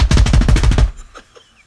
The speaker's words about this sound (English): Number three. Drum roll. Are you ready?